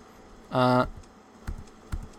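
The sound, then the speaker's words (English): Two soft, separate keyboard key clicks about half a second apart, following a brief buzzy electronic tone, with no talking; the L key of a computer keyboard is pressed to switch light modes and turn the lights on. “The L key on my keyboard is light modes.”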